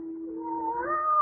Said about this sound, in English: There's that cat again.